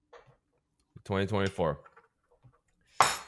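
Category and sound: household object, glasses clinking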